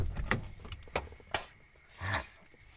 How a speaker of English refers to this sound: He opened that door a bit, get some fresh air into this car.